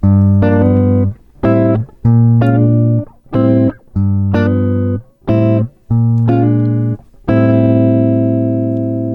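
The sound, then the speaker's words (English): Guitar seventh chords played with hammer-ons, about eight loud, bright strums in a choppy rhythm with short gaps between them, ending on a long ringing chord. No one speaks. “And here's the revised sound with the hammer-on seventh chord.”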